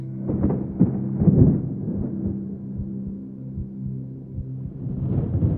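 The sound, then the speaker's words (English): A low, sustained rumble of thunder from a storm rolls on for several seconds, with a few sharper bursts early on, then settles into a steady deep growl before swelling slightly again. “The thunder continued, low and threatening, for what seemed like hours.”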